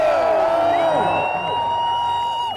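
A large crowd of Miami Dolphins NFL fans in the UK, ahead of their team's game at Wembley Stadium, cheers loudly and continuously, with scattered whoops and shrill whistles rising above the dense roar for the full few seconds.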